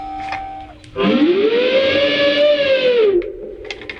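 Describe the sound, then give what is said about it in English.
An electric guitar makes a loud, bending trumpet-like wail that swoops up in pitch, holds for about two seconds with a rich harmonic buzz, then drops away, mimicking an elephant's call. “Here's my elephant again.”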